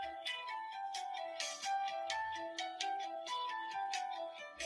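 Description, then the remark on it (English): A phone ringtone plays alone, a bright, steady melodic jingle of repeating chime-like notes in a quick, regular rhythm at a fairly even, moderate loudness throughout. “Yeah, I should probably silence that. ringtones.”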